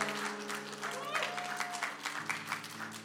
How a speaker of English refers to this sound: Come on, give some Jesus a clap. Come on.